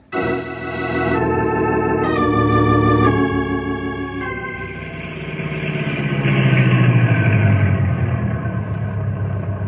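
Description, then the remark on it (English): A car engine starts up and revs in rising steps, then settles into a steady, loud rumble that swells again as it pulls away. No one speaks. “I'll take you over in my car.”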